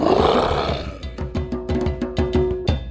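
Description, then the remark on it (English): A big cat lets out a deep, rumbling roar that starts as a broad, loud blast and breaks into a series of rhythmic, pulsing, powerful grunts. “Did you say roar? That's right.”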